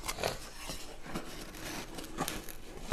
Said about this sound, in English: And I am unwrapping a 7-inch tall Evel Knievel action figure from its plastic wrapping.